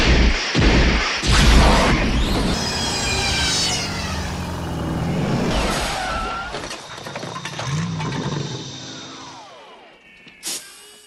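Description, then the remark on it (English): A loud, dense sci-fi sound effect of a car traveling through time back to the present: mechanical revving and whooshing sweeps build into a crashing, shimmering rush, then swirling tones trail off and fade, with a brief sharp blip at the end. “Well, let's jump back in the car here, and let's get back to the present time.”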